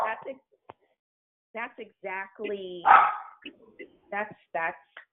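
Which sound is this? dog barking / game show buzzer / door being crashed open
dog barking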